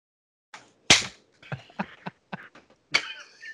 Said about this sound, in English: Is that when you slap the inner monologue stripper on his bald head? Right on top of it.